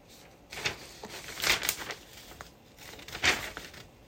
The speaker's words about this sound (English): Okay, so that's that. I'm throwing away my paper now. There's a Dilbert cartoon that I'm not, that I thought was funny at the time. You had to be there, which I just threw away.